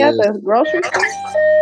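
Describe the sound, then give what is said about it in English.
A Hess toy truck plays a string of bright electronic tones, a warbling melodic jingle that ends on a sustained steady beep, loud and alone without talk. “playing with his Hess truck.”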